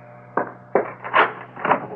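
A front door being opened: a sequence of four woody clunks and latch clicks, unevenly spaced, over a steady low hum, with no one speaking.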